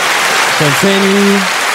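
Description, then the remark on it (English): Steady, dense hand clapping fills the whole moment, with a short sustained voiced cry rising over it partway through, like a cheer of approval. “We want to give you your flowers. Hand clap.”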